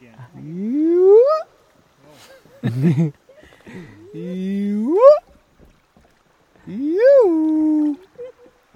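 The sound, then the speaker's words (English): A man's voice imitates animal calls in the afternoon while floating along on a trip through the wild: a low grunting burst like a hippo, then rising, whooping cries like a hyena, repeated several times in separate loud phrases with short pauses. “In the afternoons, as we float along, … entertains us with animal calls. Another hippo. Hyena. Hyena again.”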